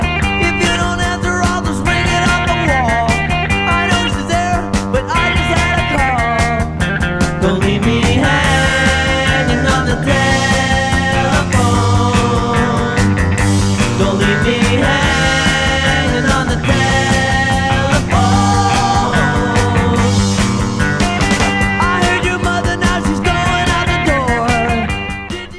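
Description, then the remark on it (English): A rock song recording by a short-lived West Coast trio plays continuously for about twenty-five seconds, loud and full, with dense layered instruments and a steady driving beat, ending abruptly. “Let's take a quick listen to a snippet of their version, and I think you'll be surprised.”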